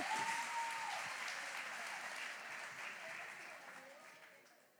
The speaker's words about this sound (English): Un fuerte aplauso. You won a big round of applause.